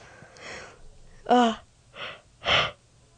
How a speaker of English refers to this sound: Why do I always yawn right as I'm about to say something important? Sorry.